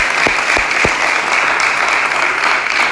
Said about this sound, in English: So can you please give them a round of applause as well?